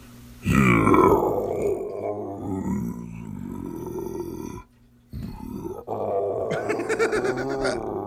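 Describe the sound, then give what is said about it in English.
A deep, rumbling Bigfoot growl sound effect rises loudly and drags on for several seconds, breaks off briefly, then returns as another long, guttural snarl, prominent with no talking. “Here's one that says Bigfoot growl.”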